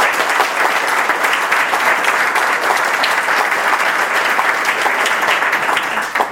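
An audience applauds steadily for several seconds, a dense, even wash of many hands clapping that holds a constant loud level before tapering at the very end.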